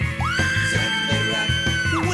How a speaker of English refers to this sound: It was a spooky night last Halloween. The ghouls were out and the children screamed.